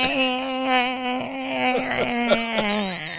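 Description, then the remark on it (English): A voice imitates the failing transmission of a 1995 Geo Metro two-door hatchback with a steady, buzzy whine held at one pitch for about three seconds, broken by a few sharp clicks and stutters near the end. “That's the transmission messing up.”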